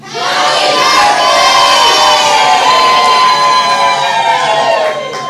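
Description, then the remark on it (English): A crowd screams and yells at full volume for several seconds, a dense, high-pitched roar of many voices sustained without a break before easing slightly at the end. “All right, ready, set, as loud as you possibly can, just go nuts. Ready, one, two, three, go!”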